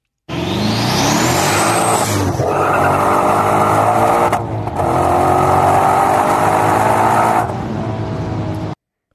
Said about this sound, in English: That first half with the car coming at you, you hear those turbos come on. Mm-hmm. Yeah, and it's not a lot of RPM. It's 3,000, maybe less than 3 when you start to really hear those things start